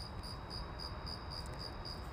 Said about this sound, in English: And then I made an audio outside at night, and that's what you'll hear as my day two. I'm out with the crickets. It's 10 o'clock California time.